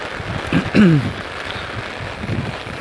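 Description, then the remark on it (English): Dense, steady hiss of heavy rain pouring throughout, with a brief falling vocal sound cutting through near the start before the downpour continues unchanged. “Oh, it's raining a lot.”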